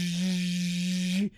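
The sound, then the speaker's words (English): An electric hand dryer blows as someone holds wet hands under it: a loud, steady motorized whir with a low hum and a rush of hissing air, blowing continuously for about a second before cutting off abruptly. No voices are heard. “Back under the dryer.”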